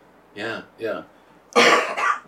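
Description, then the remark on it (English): Two short, voiced throat-clearing bursts followed by a louder, harsher cough from people fighting off a winter illness, separated by brief pauses, with no words spoken. “It's a very cough-heavy episode.”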